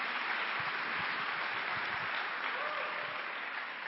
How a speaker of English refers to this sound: So if you don't mind, give him a round of applause and your attention to Pastor Steve.